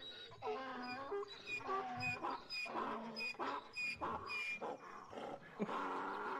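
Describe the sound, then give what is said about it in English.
Donkeys bray in distress, a loud run of harsh, wavering cries that rise and fall in pitch, overlapping one after another for several seconds with no talking. “I hope it's loud enough for them to hear these suffering donkeys.”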